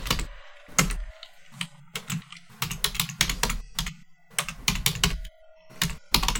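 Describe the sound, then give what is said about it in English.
Rapid, irregular clatter of keys on a computer keyboard, with bursts of clicks broken by brief pauses, clear and moderately loud with no voices, as a livestreamer types the raid call "Merraid" for a stream raid. “And chickens, if you have the subscriber chicken thing, gotta type the thing.”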